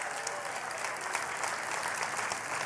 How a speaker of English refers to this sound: Hey, we got a team leaving to Mexico in a couple weeks. Can we give them a big just round of applause?